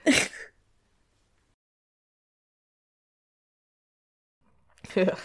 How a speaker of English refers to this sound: Clear your throat, ….